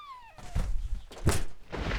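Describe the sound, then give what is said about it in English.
A cat being thrown away: a short, falling cat meow is quickly followed by a series of heavy thuds, with one especially loud impact in the middle, like something landing hard. “Now throw that cat away and let's go!”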